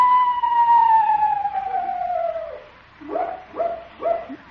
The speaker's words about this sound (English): what was that? Owl, Unc. Oh? Must have the hiccups. Hello there, Screechy.